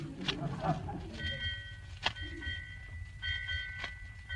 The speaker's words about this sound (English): What's the bell ringing for, McGee? That's the time, Molly. 8 o'clock.